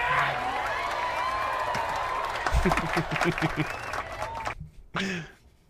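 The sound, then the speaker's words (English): Canned applause sound effect played from a button: a dense wash of clapping with some cheering and whoops, ending abruptly near the end, followed by a brief voice. “Say, can you hit the clapping one? Because I feel like it deserves it.”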